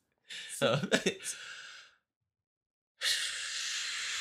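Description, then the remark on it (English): A long, breathy exhale of a deep breath breathed fully out, with a slight voiced groan at the start, then a brief pause and another steady rush of breath that carries on to the end. “if you breathe out everything, your stomach and your diaphragm goes up”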